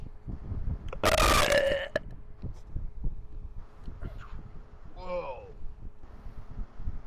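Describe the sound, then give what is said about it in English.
A single loud fart blasts for about a second with a buzzy, rasping tone, followed by quieter background clatter and a brief warbling squeak. “I thought the donkey from Doom Patrol farted and stench that wild.”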